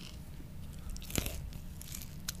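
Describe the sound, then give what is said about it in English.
A sharp crunch as someone bites into a crispy KFC chicken sandwich with Cheetos and mayonnaise, followed by softer crackly chewing noises, with no talking. “It's just a chicken sandwich with fucking Cheetos.”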